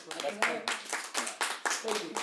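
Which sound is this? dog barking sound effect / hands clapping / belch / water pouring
hands clapping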